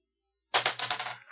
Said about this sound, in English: Roll that dice.